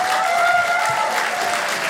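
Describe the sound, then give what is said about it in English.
Audience members aged 50 and older clap steadily in response to a poll by applause at the close of a show, a dense, even wash of many hands at a constant, fairly loud level with no voices standing out. “Applaud if you are 50 and older.”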